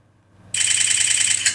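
After a brief quiet moment, a phone camera on a timer fires a rapid burst of bright, high-pitched electronic shutter clicks, loud, taking a whole bunch of selfie pictures, running steadily to the end with no talking.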